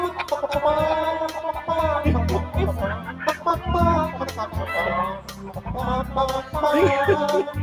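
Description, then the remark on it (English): Chickens cluck and squawk in quick, busy bursts over a loud, thumping music track with a steady bass beat, the clucking running throughout. “Because they're all chickens.”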